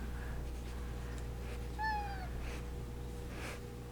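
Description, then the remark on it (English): A cat named Lady gives a single short meow, clear, over a steady low background hum with no one talking. “Now we have a cat and a dog in this podcast.”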